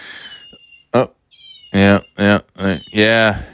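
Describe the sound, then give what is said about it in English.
A child's little toy cat lets out a quick series of short, loud electronic meows, with thin, high-pitched tones sounding before and between them; the toy keeps meowing every so often. “My child's little kitty cat toy keeps meowing every so often, and I can't figure out a way to make it stop.”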